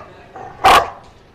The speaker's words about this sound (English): That's called barrier frustration. I looked into it. The dogs are frustrated because there's a barrier in front of them.